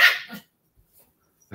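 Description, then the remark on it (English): A male puppy lets out a single sharp, high bark, fairly loud, followed by a short trailing yip and then near silence with a faint click at the end. “Come here, little puppy. Yeah, but he's a barker.”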